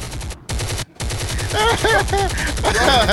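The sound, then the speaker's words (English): A gunfire sound effect: loud, rapid automatic bursts rattling almost continuously, broken by two short pauses, with high, wavering tones layered over the later shots. “Pop it! Choppers!”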